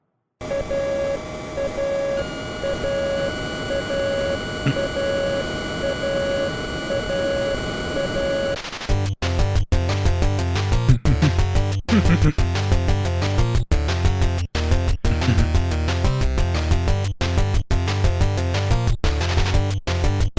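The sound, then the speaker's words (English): Chiptune music from the refueling segment of an NES plane-shooting video game: a sustained buzzy drone with a steady beeping pulse gives way to a bouncy, punchy 8-bit tune with a thumping bass line and bright square-wave melody. “And other than that, it's just shooting these other planes out of the air until you get to the refueling segment. And then this little ditty plays.”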